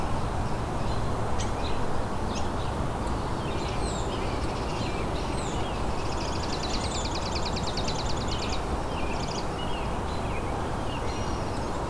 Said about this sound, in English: Got a chipping sparrow here.